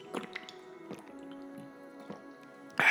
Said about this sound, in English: By the way, I have got a bottle of a protein shake right next to me at the moment. So if you ever do hear me take like a little quick sip, then I'm just drinking this at the moment, like now.